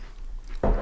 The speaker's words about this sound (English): I'm chewing.